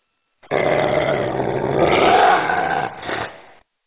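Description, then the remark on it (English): A rabid raccoon, Foamy the Raccoon, mascot of On Air Scare, growls and snarls ferociously for about three seconds, a loud, raspy, continuous rumble that swells midway and ends in a shorter rough burst, with no talking. “Folks, that was the official mascot of On Air Scare, Foamy the Raccoon.”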